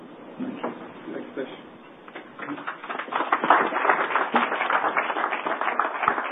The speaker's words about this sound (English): I hope you don't have to applaud again when I get off the stage, because I'm going to be back